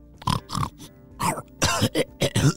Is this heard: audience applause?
no